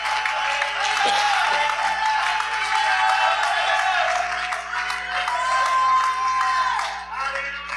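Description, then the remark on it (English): A large audience claps and shouts together at a preacher's call, a loud, sustained burst of applause and cheering, with scattered whoops rising above the steady clapping throughout. “Oh, clap your hands and shout.”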